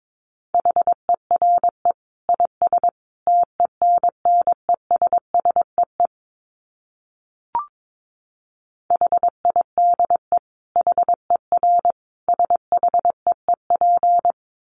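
Morse code at about 22 words per minute: a steady single-pitch tone keyed into quick dots and dashes, with a short pause and a brief click midway before the keying resumes.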